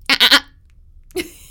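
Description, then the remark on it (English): A person imitates a goat with a quick, wavering three-pulse bleat, then after a short pause makes a higher, squeaky dolphin-like call. Both sounds are fairly loud, with no talking. “Just a moment while we make a goat noise and then a dolphin noise.”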